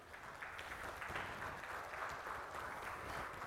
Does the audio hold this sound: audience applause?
yes